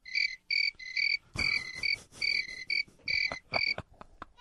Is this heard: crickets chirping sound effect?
yes